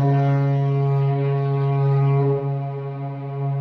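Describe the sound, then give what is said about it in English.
A single long foghorn blast, a deep, loud, droning tone rich in buzzy harmonics that holds steady for several seconds with no voices. “So we're going to have spoilers now after the foghorn.”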